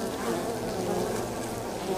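A steady, continuous drone of honeybees buzzing together, a dense swarm-like hum that stays even throughout, with no voices.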